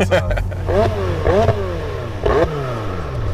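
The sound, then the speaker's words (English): A 720 sports car engine revs hard while accelerating, its pitch climbing in three rising surges broken by quick gear shifts, loud over a steady roar of road and wind. “But this thing almost takes off in the back whenever you accelerate.”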